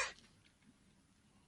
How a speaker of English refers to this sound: I coughed right when you said it. I'm sorry.